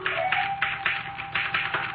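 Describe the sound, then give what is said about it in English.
A typewriter clacks away in a quick, fairly even run of crisp keystrokes, about four or five per second, with a faint steady hum underneath and no voices. “Look, the typewriter.”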